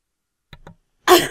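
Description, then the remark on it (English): A loud, harsh cough bursts out after a brief silence, preceded by two faint, short breathy catches. No one speaks. “You when you cough, a small cappuccino mug comes out of your mouth.”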